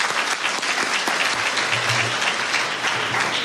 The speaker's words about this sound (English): Good afternoon. Good afternoon. Give yourself a round of applause for being here.